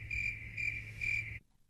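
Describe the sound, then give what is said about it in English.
Crickets chirp in a steady, shrill trill with three pulsing swells over a low hum, then cut off abruptly into near silence. “Crickets exit stage left.”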